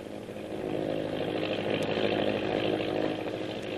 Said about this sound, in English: the Navy patrol plane is winging its way to a meeting with the destroyer, which is still hunting the disabled submarine, now safe in the lagoon on Thorson's Island.